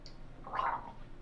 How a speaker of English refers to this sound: If the audience couldn't hear that, I just gargled some Sunny D.